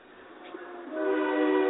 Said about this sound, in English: But when you, did you hear the train just went by? That's okay. The train's going by your foundry, which is kind of cool.